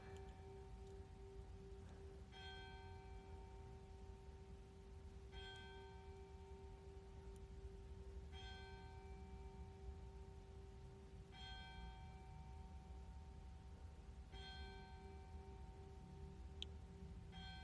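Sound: church bells ringing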